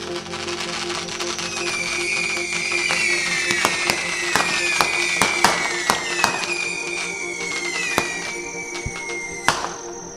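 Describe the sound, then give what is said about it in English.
Fireworks rockets launched from family plots in a cemetery whistle with falling tones and burst in the sky above the graves in a steady run of sharp bangs and crackles, fairly loud, going on for several seconds with no one speaking. “As the rockets soared from the family lots, exploded in the sky above the graves of mothers and fathers and grandmothers and great-grandfathers, I realized they were not fireworks of celebration.”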